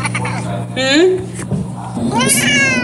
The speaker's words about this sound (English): Well, he really has to warm up for his meows, because mm-hmm. this is the same cat right here. Yeah. I mean, listen to how, it almost sounds like a lion.